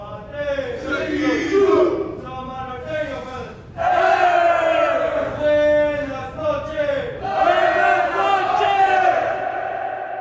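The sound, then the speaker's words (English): Samoan prisoners in reception yelling and chanting together in loud, sustained, harmonic shouts, coming in three long surges with brief dips between them, like a collective battle cry, performing their nightly shutdown ritual at around 10 o'clock. “That's the Usos, the Samoan cats, doing their shutdown.”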